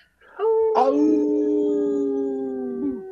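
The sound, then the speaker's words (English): Human voices imitate a wolf howl, several sustained tones rising and then holding steady together for about three seconds, loud, with a brief rising swoop near the start. “Thanks for not leaving me to howl on my own today”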